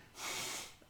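nose blowing

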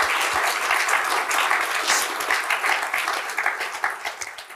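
round of applause

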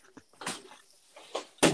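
door bursting open

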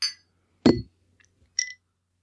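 glasses clinking

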